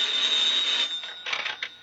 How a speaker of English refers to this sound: A few moments later, the phone rang in an Orange police station.